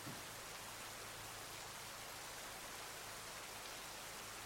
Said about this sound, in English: For the next minute, can you just focus on the sound of the rain?